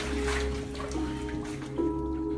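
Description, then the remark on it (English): Floodwater from Hurricane Harvey splashes and rushes steadily, fairly loud, over a low continuous motor hum, with no one speaking. “We got some water, y'all. Harvey wasn't playing.”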